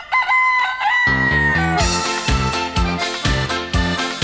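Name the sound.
rooster crowing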